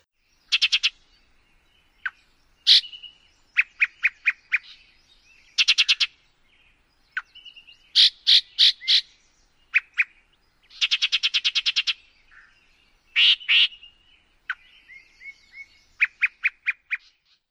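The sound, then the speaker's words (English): A Yellow-breasted Chat sings a disjointed series of widely spaced phrases: harsh croaks, clear whistles and rapid repeated chattering notes, loud with short pauses between, no other sounds. “chats sing a series of widely spaced croaks, whistles, and short repeated phrases, very unlike a typical warbler song.”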